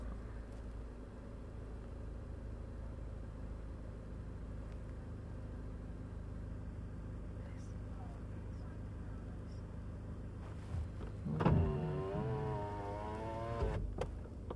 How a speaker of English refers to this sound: Make sure they get their car cranked up.